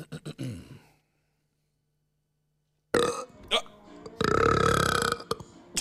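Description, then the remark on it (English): A short, choppy deliberate burp, then after a silent pause a long, loud, drawn-out belch that rumbles and croaks, with no talking. “I can burp, like, whenever the fuck I want to.”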